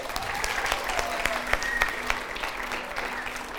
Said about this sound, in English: Excellent. Can we give her a clap?